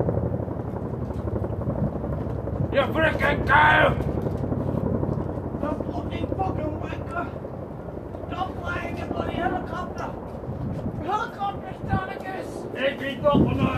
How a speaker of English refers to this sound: I fucking hate helicopters. Especially when you're trying to do something that requires silence!